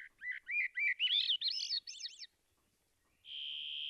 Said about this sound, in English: Well, I gotta say, I feel like the gates of heaven are thrown wide open on this summer morning on the coast of Alaska with hermit thrushes and varied thrushes and Swainson's thrushes all giving us this magnificent chorus of wild voices.